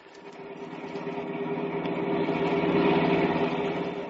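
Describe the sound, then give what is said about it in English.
A taxi cab engine runs steadily on a rainy night with a low, humming drone that slowly grows louder over a few seconds, with no voices present. “What I need is a cab, a quick trip home, a short drink, and a long, long think.”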